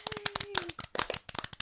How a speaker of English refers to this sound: Insert applause here.